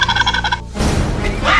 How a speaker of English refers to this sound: And now, the turkeys are fighting mad. Turkeys are not just smart, but viciously smart. And fighting back.